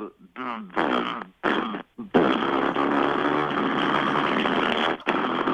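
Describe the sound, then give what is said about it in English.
A voice imitates a motorcycle engine rumble, which the listener guesses is a 1994 Yamaha XV750 Virago: a few short, choppy revving bursts, then a long, steady, buzzing growl held for several seconds at a loud, even level. “It's like a rumble, like a...”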